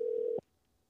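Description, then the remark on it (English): A steady telephone tone hums for a moment as a phone call goes unanswered, then cuts off abruptly with a soft click, leaving near silence. There is no talking. “Now she can't pick up the phone either.”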